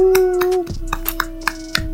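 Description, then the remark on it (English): Sparse, scattered hand clapping, a thin round of applause welcoming a returning guest, with individual claps spaced irregularly, over a steady droning tone that drops slightly in pitch early on. “And we can give her a round of applause.”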